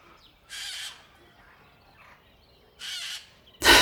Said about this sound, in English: The birds. Once you walked past the small entryway, the birds were everywhere.